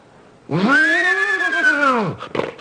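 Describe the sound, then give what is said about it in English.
A person imitates a horse's whinny: one loud, drawn-out tonal cry that swells, holds an arched pitch for about a second and a half, then drops away, followed by a few short breathy sounds. “So first do just the horse, the whinny.”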